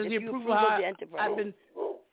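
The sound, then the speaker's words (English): A man imitates a dog's barking with his voice, giving a few loud, drawn-out woofs in quick succession, then a short softer yelp. “Let me tell this dog. Let me bark the dog out.”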